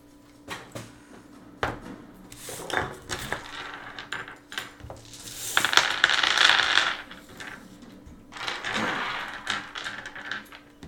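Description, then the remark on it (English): Dice clatter and rattle as they're poured and shuffled out of a container, with bursts of clicking, including a denser jangling stretch midway and another near the end. “Why are you taking your dice out?”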